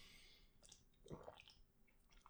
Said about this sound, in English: I'm going to toast myself on this one, so go ahead and crack those beers. Take a little sip.